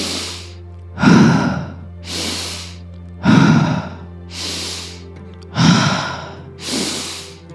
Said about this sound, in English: Keep going, keep breathing. Don't worry if you are off my pace or if you stay on my pace. Whatever works for you, just keep breathing, no matter what I'm doing, saying, or breathing.